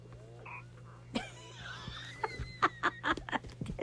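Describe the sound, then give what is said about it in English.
A baby's short, croaky burp bursts out as she is being put down, followed by a run of soft squeaky chirps and a rapid series of small croaking clicks, with no one talking. “Went to put her down and she burped.”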